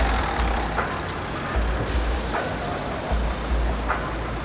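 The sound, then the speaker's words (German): A car engine rumbles with steady low road noise as the car approaches, pulls up and stops beside a person, with a brief hiss partway through and no voices. “Es ist Freitag 18.03 Uhr, als sich plötzlich ein Auto nähert und neben”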